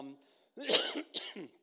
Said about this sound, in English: excuse me, now I'm coughing and I'm going to fall over.